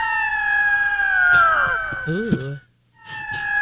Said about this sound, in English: This one is our disco echo. Oh, disco. Yeah, disco, our disco eagle. Eagle.